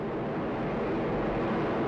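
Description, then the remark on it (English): An Atlas V rocket with an RD-180 engine launching NASA's Perseverance Mars rover from Cape Canaveral, Florida, about 30 seconds into flight and going supersonic: a deep, continuous roar rumbling steadily at high volume, a dense crackling wash of noise with no pauses and no voices. “That sound was the Perseverance rover launched by NASA from Cape Canaveral, Florida.”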